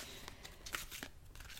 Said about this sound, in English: So I'm just going to shuffle these cards. And while I'm shuffling these cards, I'm just going to say thank you for some guidance for the highest good right now of those who will listen to this podcast episode.